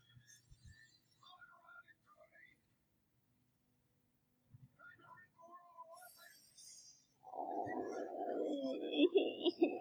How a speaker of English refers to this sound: Stop scaring Pepper, you jerk. Oh, it's raining glass on her.